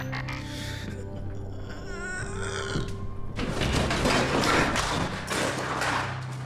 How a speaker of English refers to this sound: The refrigerator shifts and topples to the side.